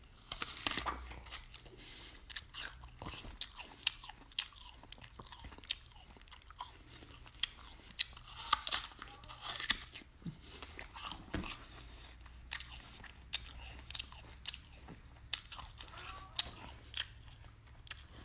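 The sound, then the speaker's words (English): Crisp crunching as someone bites into a Pink Lady apple with crunchy skin and chews, with sharp irregular snaps and wet mashing repeating steadily throughout, no talking. “The skin on this one is really crunchy, along with just the meat of the apple, the flesh of the apple.”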